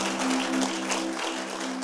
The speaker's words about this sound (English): Clap and give God praise.